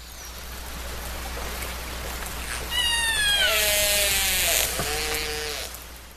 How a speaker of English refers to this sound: Let's take a listen to what orcas actually sound like.